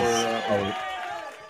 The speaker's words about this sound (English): That's a good applause. It's a good applause. That's right. That's right. It is a good applause.